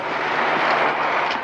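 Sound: vehicle engine running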